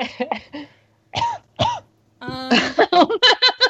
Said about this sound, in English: It was just that cough was like perfectly accentuated the end of the sentence. Yeah. I was trying so hard to hold it in too.